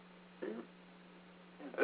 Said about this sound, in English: Please, drink some water. I've drinking a lot of water. I just have hiccups.